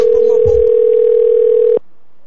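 A loud, steady telephone dial tone hums for nearly two seconds, with a brief soft handling rustle near the start, then cuts off abruptly into quiet, as a call is placed to a woman's sister.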